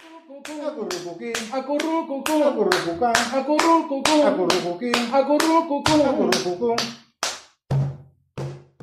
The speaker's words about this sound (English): Their music started by using body percussion, clapping, and stomping.